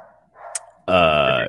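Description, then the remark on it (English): A single loud, drawn-out dog bark rings out, following a stretch of faint background murmur and a brief sharp click. “I hear barking.”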